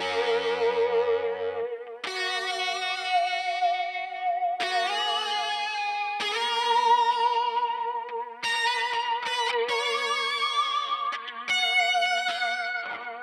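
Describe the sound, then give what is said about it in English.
An electric guitar played through an Electro-Harmonix Holier Grail reverb pedal plays sustained chords drenched in lush, shimmering reverb, each strum blooming into a long washy tail. Loud, with no voices, several chord changes ringing into one another. “That is the Electro-Harmonix Holier Grail reverb pedal.”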